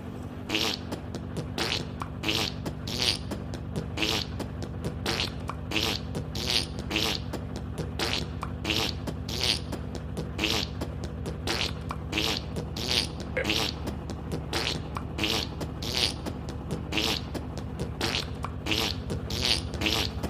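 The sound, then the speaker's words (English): A steady series of short, raspy fart-like sputters, roughly one per second, repeats over a constant low hum. No one speaks. “Forgive my coarseness, listeners, but with my own eyes, I am seeing unicorns fart rainbows.”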